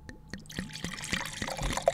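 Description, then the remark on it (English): Wine glugs into a glass in a steady pour, with rhythmic gurgling pulses and a rising splashy trickle as the glass fills, ending in a small clink. “So sit back, pour yourself a glass”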